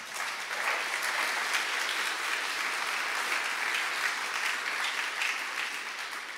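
An audience applauds steadily for several seconds, a dense, even wash of many hands clapping at a constant level, with no voices standing out and a slight easing toward the end.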